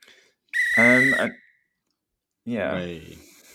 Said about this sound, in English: Alarm's so loud. It's so loud. I can try and turn it down. It's okay. Fine. Wow. It wakes me up every time, so it's good.